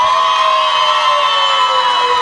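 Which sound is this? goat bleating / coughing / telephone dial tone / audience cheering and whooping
audience cheering and whooping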